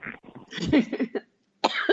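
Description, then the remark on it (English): Several dry, rasping coughs and throat-clearing bursts from a person with a dry throat come in a rough cluster, fairly loud, followed by a short pause and one more hacking cough. “I'm sorry, I'm having a little bit of a dry throat here.”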